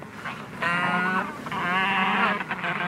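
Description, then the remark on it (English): Penguins waddling around a beach squawk in two long, harsh, wavering calls, the second stretching out longer and louder than the first, with a bleating, braying quality and no voices. “That squawking is coming from some black and white birds waddling around the beach.”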